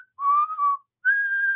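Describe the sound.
A person whistles a short tune imitating the intro of James Storm's theme song: a wavering lower note followed by a brief pause and a higher, steadier held note, clear and alone.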